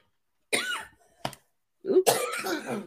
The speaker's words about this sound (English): Hey, coughing.